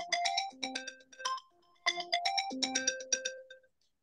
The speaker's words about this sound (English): sorry about my telephone ringing. I'm about to turn it on.